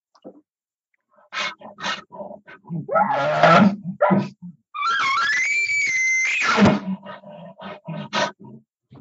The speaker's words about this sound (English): Okay. So see, both those are huffs, grunts, and whines. The first style is you're kind of easy and light and excited, and oh man, this is great. And then as things kind of progress, and now frustration and anger is kind of setting in a little bit.